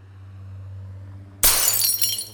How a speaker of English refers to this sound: Now there's broken glass all over the place. More than there was before.